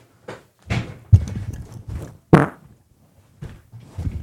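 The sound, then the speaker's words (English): A series of short, wet, sputtering fart-like blasts, about seven bursts with gaps between them, moderately loud, with no talking, played as a supposed Sasquatch sound. “There's a Sasquatch sound. Welcome to the fart zone.”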